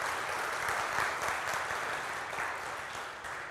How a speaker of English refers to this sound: And so would you just give a round of applause for that? We're excited for that.